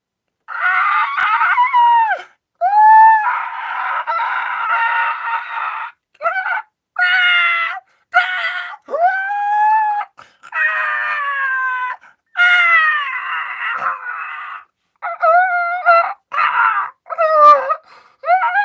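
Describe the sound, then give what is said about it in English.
A voice imitates a shrieking monster with a string of loud, wavering screeches and wails, broken by brief pauses, harsh, almost cat-like, with no ordinary speech. “I got to do the Shrieker first”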